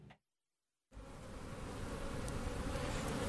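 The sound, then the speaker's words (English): A dense, steady buzzing of many honeybees swarming at Hunter's Honey Farm in Martinsville, Indiana, starting abruptly after a brief silence and continuing loud and continuous with no talking. “Hear anything? Yes. A lot of bees swarming.”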